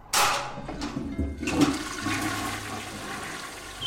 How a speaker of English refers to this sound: With the arm around the water pipe, he reached up and pulled the cord on the water closet.